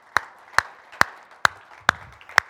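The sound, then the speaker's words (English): Six crisp, sharp hand claps in a steady, even rhythm, about two per second, moderately loud, with no voices; a church audience applauding the worship team after a morning worship service. “Let's give them a round of applause for bringing that for us this morning.”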